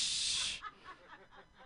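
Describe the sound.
A voice imitates a spray paint can being used for tagging, with a steady, bright hiss lasting about half a second, then trails off into faint breathy sounds.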